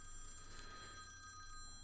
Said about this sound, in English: You want to take a call? It's phone ringing, yeah.